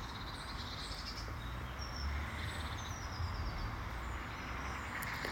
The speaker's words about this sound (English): Open up to sound. The sounds where you are. The sounds on this recording. The beautiful bird who just sang for me then.